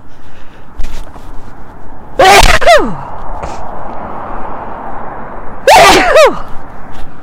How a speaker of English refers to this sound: I'm going to sneeze.